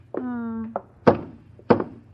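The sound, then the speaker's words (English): Two hollow, solid knocks by a woman on a wooden lifeboat, spaced a little over half a second apart, preceded by a short steady tonal hum. “Lady, will you please stop knocking on those lifeboats?”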